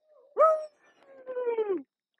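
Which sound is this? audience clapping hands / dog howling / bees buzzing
dog howling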